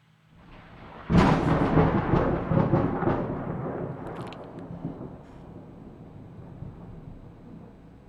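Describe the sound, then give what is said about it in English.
A loud thunder crash from a lightning strike bursts in suddenly after a quiet second, then breaks into a long, crackling rumble that slowly fades away. No voices are heard. “Oh my God, did lightning just strike the studio, Ashvin?”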